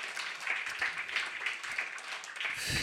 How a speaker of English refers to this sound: Okay, wow, what an amazing open mic. Let's give a round of applause again for all these readers tonight. Just remarkable work.